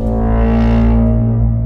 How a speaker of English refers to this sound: And there's drum beats and that loud like foghorn. That's not quite a foghorn thing. It just sounds like the bwah.